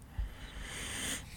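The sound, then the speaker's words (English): A single short, forceful throat clearing bursts out at the end, after a second of quiet, breathy background hiss. No one speaks. “Sorry, I gotta clear my throat for a second.”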